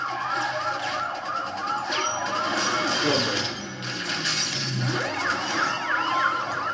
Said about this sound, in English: Where is he? Just follow the sirens.